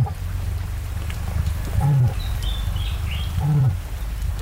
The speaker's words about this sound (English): And cassowaries are capable of making remarkable sounds.